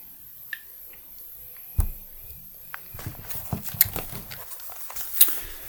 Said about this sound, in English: Let me take a little sip of beer here, guys.